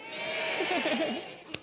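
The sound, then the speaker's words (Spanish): A human voice imitates a sheep's bleat, a wavering, quavering "baa" held for about a second over steady background noise, followed by a brief click. “Una oveja aquí. Una oveja allá. Todas las ovejas.”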